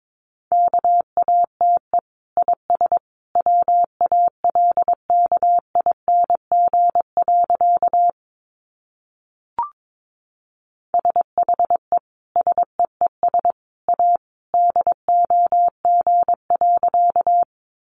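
Morse code sent at 22 words per minute: a single steady mid-pitched tone keyed into rapid short and long beeps, broken by a pause near the middle with a faint click.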